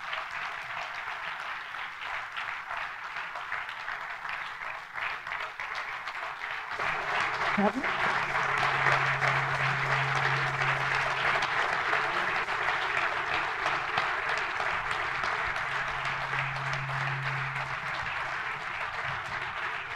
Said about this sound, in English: Round of applause